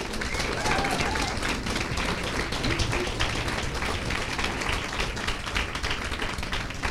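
Sustained audience applause for three tellers at a true-story telling event, a dense wash of many hands clapping at a steady, fairly loud level for several seconds with no breaks.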